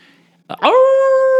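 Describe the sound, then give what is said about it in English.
A wolf howl begins with a short breathy burst, then swoops upward into a loud, steady, sustained tone that carries on without fading until the sound cuts off. “Oh, there's one. I'm not alone. Hey, there's another wolf.”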